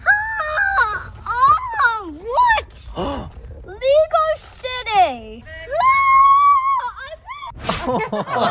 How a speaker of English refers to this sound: Oh, and he screamed all the way inside